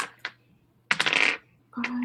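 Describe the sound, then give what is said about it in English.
Dice clatter across a hard tabletop in a rattling burst, preceded by a couple of light clicks and followed by a brief final tumble; the roll comes to 20, a hit. “20, okay, that's a hit.”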